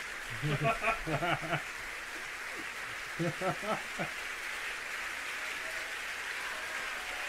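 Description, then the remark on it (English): A steady, even wash of audience applause runs the whole length, with a couple of short bursts of voices rising over it near the start. “Gotta have that all, the whole applause. It's only half over, so.”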